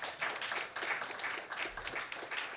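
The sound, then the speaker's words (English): A crowd applauds steadily, a dense, continuous patter of many hands clapping at once, sustained throughout without any voices. “Hey, man, you don't have to applaud all of them.”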